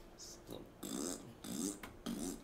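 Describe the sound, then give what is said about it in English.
Three loud, sputtering fart-like noises made by squeezing a hand against an armpit, fired off in quick succession, with a few smaller squelches just before them. “You would put it in your armpit, you would make fantastic fart noises.”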